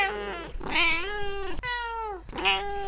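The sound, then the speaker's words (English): A male cat meows loudly and insistently, three drawn-out, wavering cries in quick succession, clear with no talking over them. “Oh, hello, Kipper. You feeling better this week, Kips? Yeah, he sounds all perky now.”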